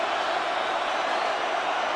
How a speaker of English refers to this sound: See, you hear the crowd go down a little bit. Now they're back up.